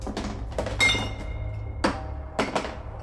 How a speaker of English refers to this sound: I flinch as my arm hits a shelf, and tins clatter to the dirt floor with distant metallic clunks.